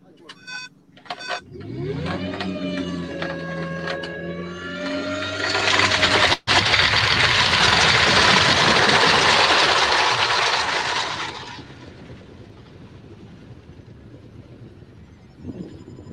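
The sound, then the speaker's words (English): A glider winch launch: a steady mechanical whine climbs in pitch, then gives way to a loud, rushing wind roar that fades after several seconds into a quieter, steady hum. The powerful winch pulls the glider into a fast climb. “The winch has a lot of power, so you actually climb really fast.”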